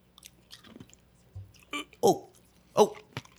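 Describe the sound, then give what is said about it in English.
Crunching of meth in the mouth, several sharp, crackly bites in an uneven rhythm, with soft wet chewing and mouth noises between them. “It's when you put the mess inside your mouth and you crunch it.”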